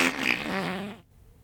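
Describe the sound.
A buzzy mouth fart noise, a single blubbery lip raspberry lasting about a second with a wavering pitch, made by a person imitating a fart at a baby in a stroller in an ocean breeze, then cutting off into quiet.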